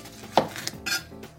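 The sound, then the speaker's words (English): A handful of crisp knife strikes on a cutting board, irregularly spaced, as half a red bell pepper is chopped. The clicks are sharp and bright, with no one speaking. “I'm going to chop up this half a bell pepper.”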